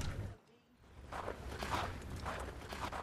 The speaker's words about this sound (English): Sound of footsteps. It's snowing. Out here look all pretty.